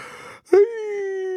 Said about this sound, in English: Yeah, my bad. It's a yawn.